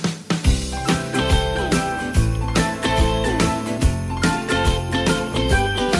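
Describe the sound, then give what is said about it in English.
An upbeat Christmas rock song plays steadily at full volume, driven by a bouncing bass line and regular drum hits, with bright jingle bells shimmering over the top. “Here's another super annoying Christmas song.”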